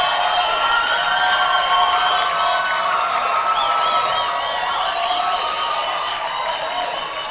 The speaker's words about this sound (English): Coming up next, we have our sister all the way from Bindura who ministered this morning. I wanted to minister that same song again. So let's clap our hands and receive her.